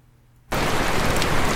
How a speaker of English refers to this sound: This one is from …, and it's called ….